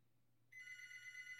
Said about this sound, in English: When she entered the doorway, again, the phone rang out. Now it's almost like a chilling bell.